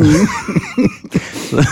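A fairly loud run of short coughs, about five rough bursts in quick succession with brief gaps between them, and no talking.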